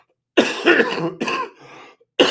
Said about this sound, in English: Excuse the coughing. I'm sick.